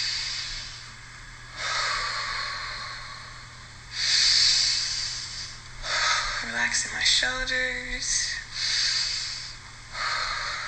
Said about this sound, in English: I'm about to do some quick breathing exercises. Inhaling through the nose, out through the mouth a few times.